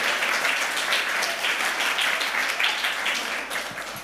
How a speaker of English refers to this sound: Let's just have a round of applause for the people who helped with that.